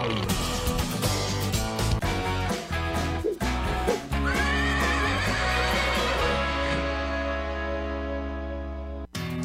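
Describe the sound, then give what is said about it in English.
A horse whinnies once, a long wavering neigh rising above a loud, steady backdrop of music with heavy bass, ending abruptly near the close. It is part of the intro to the Horse Talk Show on Florida Sports Talk. “You never heard of a talking horse? Well, listen to this.”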